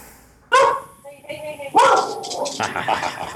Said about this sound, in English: I was trying to get my dog to bark at that dog, but, you know.